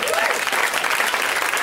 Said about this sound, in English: Well, round of applause for this person,